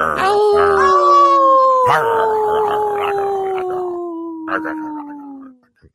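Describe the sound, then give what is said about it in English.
A person imitates a wolf: one long, sustained howl that rises briefly, then slides slowly downward in pitch for several seconds before trailing off, loud. “I did a howl while he's chewing on a bone.”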